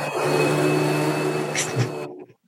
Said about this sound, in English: Lou's vacuuming up the studio real quick.